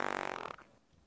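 A short, buzzy fart with a rapid rattling flutter for about half a second, then a quick trailing fade. Close and fairly loud, with no one talking.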